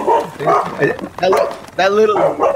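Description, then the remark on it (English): A dog barks in a string of short, sharp yaps with a whiny edge, loud and uneven in rhythm, while people talk over and around the barking. “Everybody wants to be on radio, even the dog.”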